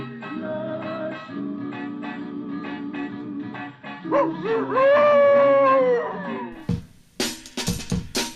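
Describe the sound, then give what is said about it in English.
An actor's voice howls like a dog over a steady instrumental backing in a film's striptease song, the long wavering howl rising loudly in the middle before the music turns choppy and percussive. “that really weird stripper song from Yesterday, Today, Tomorrow with Mastroianni howling like a dog”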